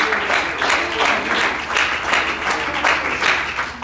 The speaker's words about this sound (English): I got a clap for him. I got a dance because he deserves it.